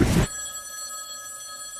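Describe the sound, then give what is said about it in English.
A telephone rings with one steady, sustained electronic bell tone lasting about a second and a half, clear, framed by brief loud bursts of noise at the start and end. “First, that phone over there is gonna ring.”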